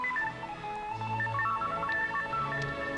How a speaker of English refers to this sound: And it's singing along with the orchestra. And everybody's like, what is that? He's the first San Francisco jerk to have his phone. Yeah, it's not like a cell phone. Ringtone.